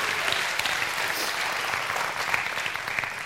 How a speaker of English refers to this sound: So parents, we give you a round of applause. Thank you for your dedication to those kids. Way to go.